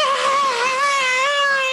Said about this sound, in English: I mean, her screaming, like that high pitched squeal.